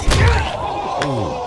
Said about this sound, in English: she deserves a groin kicking. That deserves this.